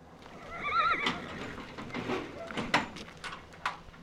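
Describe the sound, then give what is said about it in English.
A horse whinnies in a high, wavering call, followed by a run of sharp, uneven hoof clip-clops and scuffs over a low background rumble, as people on horseback and on foot make a run for the mountainsides in the pitch black at the winter range gate near Jackson. “In the pitch black, people on horseback and foot are making a run for the mountainsides.”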